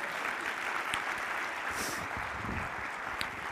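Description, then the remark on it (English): An audience claps steadily throughout, a dense, even wash of many hands with a few sharper individual claps standing out; no voices are heard. “We can clap.”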